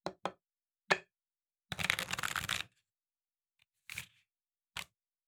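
Tarot cards being shuffled: a few sharp taps and flicks, then a dense riffling burst lasting about a second, followed by a couple more soft slaps as the deck settles. No voices.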